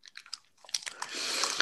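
A firm bite into a cold Snickers bar kept in the fridge: a few crisp, sharp cracks, then a denser run of crunchy chewing that grows steadier toward the end, quiet and with no voices.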